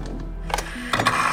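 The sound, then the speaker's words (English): An antique gramophone crank is given a few turns after the needle is set at the edge of the record: short mechanical ratcheting bursts over a low steady hum, with a brief pause between turns and no voices. “So carefully, he moved the needle to the edge of the record and gave the crank a few turns.”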